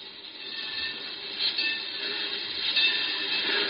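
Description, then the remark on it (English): A freight train rumbles and clatters steadily through the Great Valley Railroad's freight terminal, a dense continuous roar of wheels and cars that swells slightly toward the end, with no voices. “Finest freight terminal in this part of the country, Browning.”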